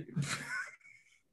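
A single shocked gasp: a sharp, breathy intake with a strained voiced edge, lasting under a second, then tapering into a faint airy trail.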